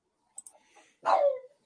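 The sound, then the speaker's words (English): A dog lets out one sharp, loud bark, dropping slightly in pitch at the end, after a few faint clicks and soft rustling. “I get rid of this dog.”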